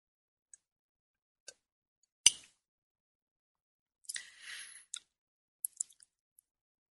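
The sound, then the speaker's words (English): A quiet sip of espresso from a cup: a short airy slurp, surrounded by scattered small clicks and a sharp tap like porcelain being set down, with no talking. “I'm going to take a sip of my espresso here.”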